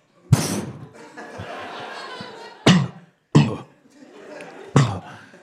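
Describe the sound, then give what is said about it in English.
A voice imitates a smoke pellet being thrown down: a sharp pop, then a long hissing rush. Three loud coughing fits follow at irregular intervals. “Throwing down a smoke pellet.”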